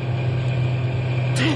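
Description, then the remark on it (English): A truck engine runs steadily, a loud, continuous low drone with a broad rumble that holds unchanged throughout, and a brief voice-like sound rises near the very end. “Stop the truck.”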